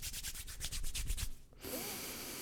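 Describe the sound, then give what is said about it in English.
Palms rubbing briskly together after a couple of drops of an essential oil formula called Respire, with eucalyptus, frankincense and thyme, are put in the hand. About ten quick swishing strokes in a steady rhythm, then the rubbing stops and a flat, even hiss remains. No one speaks. “Then I rub my hands together like this.”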